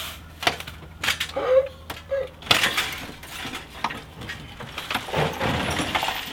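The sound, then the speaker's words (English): Glass shards spill out the bottom of a bin in a rattling stream of bright clinks and crunches, with sharp tinkling bursts scattered over a continuous gritty pour, fairly loud and without any talking. “It's just pouring glass shards out.”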